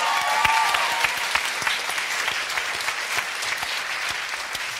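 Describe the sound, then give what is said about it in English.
A crowd claps steadily for several seconds, a dense wash of many hands at moderate loudness with a few sharper individual claps standing out, no voices on top. “So, really, there shouldn't be a clap, but yeah, one day there won't be.”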